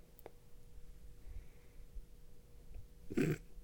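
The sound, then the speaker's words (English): A single short dog bark near the end, soft, over a quiet room hum with a faint click or two earlier. “All the dog barking and you thinking.”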